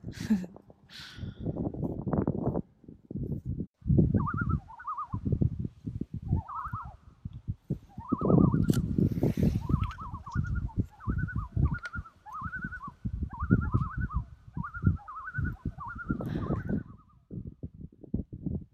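Loons call in a long wavering tremolo, the quavering notes repeating steadily for several seconds over a low rumble of wind or handling noise.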